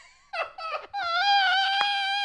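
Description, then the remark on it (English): A voice imitates a warning siren: two short, wavering bursts, then one long, loud, high wail that holds steady without pause until the end, with no other sound around it. “Did you get paid to be the siren?”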